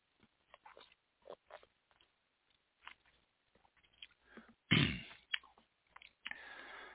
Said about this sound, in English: Next one, number 5, Maestro Berardino. Excuse me, let me take a sip.